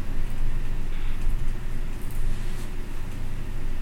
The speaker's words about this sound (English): Oh, Bobby here needs to get this fucking car rolling with his tire taken off.